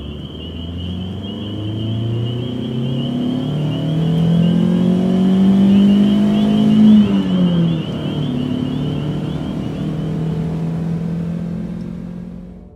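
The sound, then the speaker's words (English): A car engine revs up loudly, its pitch climbing and holding for several seconds, then the car drives off and the rumble eases lower. No one speaks. “Orinda helps Hudson in her car first. Come on, get in my car.”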